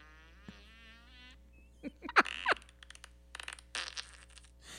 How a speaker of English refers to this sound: Sounded so wrong. The dog jumped up and in that. He's moving his head back and forth like, what was that? Did that remind you of your daddy? You're looking for a suspect and you hear a fart.